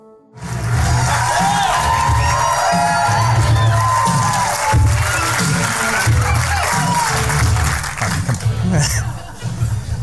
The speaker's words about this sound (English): Okay, so these guys all know me, so that's why they're cheering so loud.